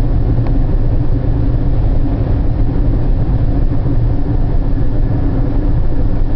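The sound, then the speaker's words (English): A steady, loud low rumble of a car driving in considerably heavier traffic with cruise control switched off, with continuous engine and road noise and no pauses or distinct events. “The traffic has grown considerably. had to take it off cruise control.”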